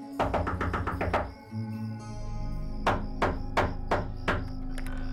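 A rapid series of about eight sharp knocks on the door of a house on Easey Street at 3 in the morning, a short pause, then five slower, heavier knocks. Fairly loud, with no voices.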